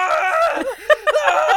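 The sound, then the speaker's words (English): A person lets out a strained, high-pitched scream, as if in pain, rising and breaking into a couple of sharp louder bursts before carrying on; acted, as a character whose bones crack and lengthen. “Starts screaming.”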